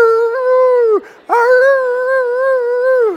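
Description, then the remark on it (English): Two long, steady howls from a dog named Samson, who has jumped into a chair and put his paw on a pastor's forehead. The howls are at a fairly high pitch, each sliding downward at the end, with a brief breath-like pause between them and no talking. “Immediately, Samson jumped in a chair, put his paw on the pastor's forehead, and started howling.”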